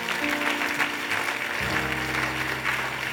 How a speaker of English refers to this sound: If you are clapping, clap, because something is coming your way. If you are celebrating, celebrate, because a miracle is coming. If you are clapping, clap, because there is going to be divine intervention.